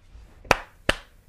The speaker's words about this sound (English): You deserve one clap.